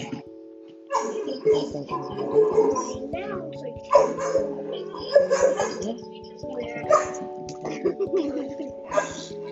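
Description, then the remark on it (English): A dog in a bathroom barks and yips in repeated bursts, its cries turning high and whiny between barks, continuing throughout with only brief pauses. “And my dog in the bathroom.”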